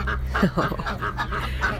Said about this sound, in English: The ducks are happy to say hello today.